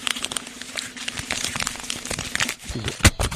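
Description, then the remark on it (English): Continuous crinkling and rustling of paper printouts of news headlines being handled, with irregular crackles and one sharper crisp snap near the end, no voices. “Paper. On paper, you know, appropriately.”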